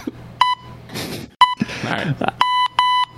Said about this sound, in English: Beep. Beep. You still got, here it comes.